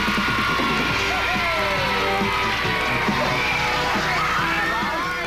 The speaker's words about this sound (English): We give another cheer for Mitch Weissman. Here he is.